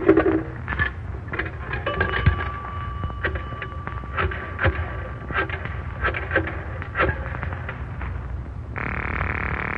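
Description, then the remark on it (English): A coin payphone in use, paid with a nickel, to call the police department: a string of mechanical clicks and clunks from the handset and dial, a faint steady tone, then a buzzing line tone near the end, with a low background rumble. “Give me a nickel, …. Yes, …. The phone's right there.”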